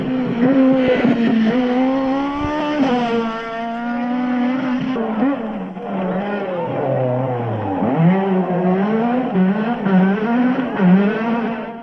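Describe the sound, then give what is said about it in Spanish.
A rally car engine revs hard and continuously, pitch climbing and dropping through gear changes, loud, with no talking over it. It is the car that took Chus Puras to the 1997 championship. “Y es que este coche llevase el campeonato en el año 97 a Chus Puras nuevamente, con este coche que, bueno, pues que todos los aficionados a las cunetas recordamos cómo sonaba.”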